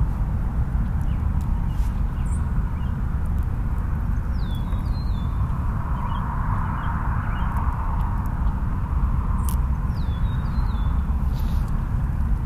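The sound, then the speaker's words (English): Two short bursts of clear, slurred whistling notes from an Eastern Meadowlark, a few seconds apart, fairly faint over a steady loud rumble of wind or traffic noise. “Is that the Eastern Meadowlark there? That's an Eastern Meadowlark.”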